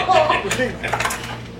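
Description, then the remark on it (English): A pen drops and clatters on a tabletop in a quick burst of bright, rattling taps that settles within a second, over a low steady hum. “Drop the pen. Don't get it on the wall.”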